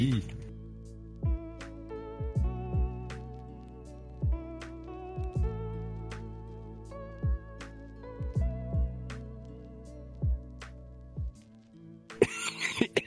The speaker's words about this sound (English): Oh my god, I was holding back that cough.